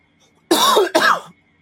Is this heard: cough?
yes